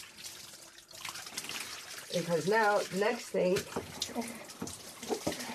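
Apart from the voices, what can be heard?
water running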